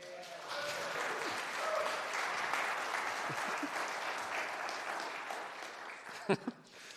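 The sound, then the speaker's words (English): A room full of people claps steadily for several seconds, welcoming a preacher before he speaks, a dense, sustained wash of applause that stays even before tapering, with a couple of sharp louder claps near the end. “First service, they clapped afterwards.”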